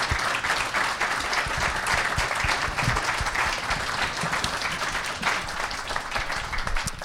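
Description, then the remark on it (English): An audience applauds a panel steadily, a dense wash of overlapping hand claps that stays loud and even for about seven seconds without anyone speaking. “Let's give them a hand of applause.”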